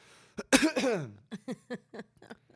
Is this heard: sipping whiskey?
no